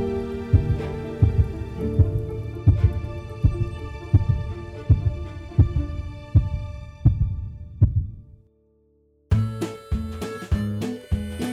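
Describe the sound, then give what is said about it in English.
A heartbeat sound effect thumps steadily and loudly over a low sustained drone, breaks off briefly into near silence, then returns with quicker, more urgent beats. No one speaks. “heart beat rapidly.”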